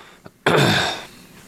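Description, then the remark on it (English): A single harsh, raspy throat clearing, a short noisy burst lasting about half a second after a faint click, with no talking. “Let me clear my throat. I got to do the clearing throat.”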